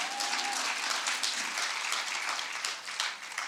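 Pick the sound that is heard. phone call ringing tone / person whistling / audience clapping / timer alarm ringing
audience clapping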